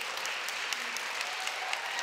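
audience applause and cheers

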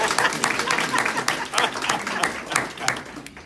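audience applause

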